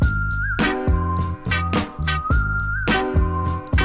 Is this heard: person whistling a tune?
yes